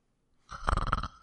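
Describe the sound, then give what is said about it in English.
A single short, raspy snore made by a voice, a fairly loud guttural buzz lasting under a second, with no talking around it. “I don't know who did the snoring effect.”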